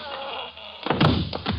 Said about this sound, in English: Mr. Templar, I'm going to wear that gun out, hitting people over the head with it.